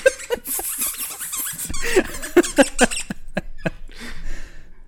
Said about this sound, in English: Please don't have a squeaker in that toy, son of a bitch!